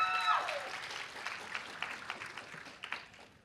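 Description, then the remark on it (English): An audience claps steadily for a few seconds after a wife's session, a dense patter of many hands that slowly thins out, opening with a brief high-pitched whoop or cheer. “All you men, you got to make sure your wife gets the applause.”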